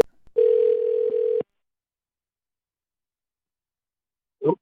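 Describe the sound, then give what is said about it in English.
A telephone dial tone as a call is placed live on a sports show: one loud, steady low-pitched tone holds for about a second, then cuts off into silence before a brief, muffled burst of sound at the end. “Let's call the GOAT of GOATs.”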